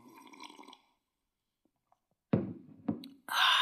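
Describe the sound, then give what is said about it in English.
Someone sips cold tea: after a quiet pause come two short, wet slurping gulps, then a louder, sustained rush of noise at the end. No one speaks. “I'm just going to take a sip of tea here and regret half the things I just told you.”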